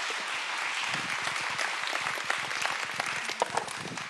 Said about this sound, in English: And so would you guys just give them a big warm applause? Thanks for those words.